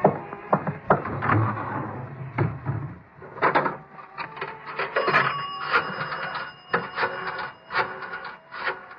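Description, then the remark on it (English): A telephone rings steadily through the second half, mixed with clattering and rubbing sounds of handling, like a receiver and fittings in a telephone booth being worked as a phone call is made. No one speaks. “I got to make a phone call.”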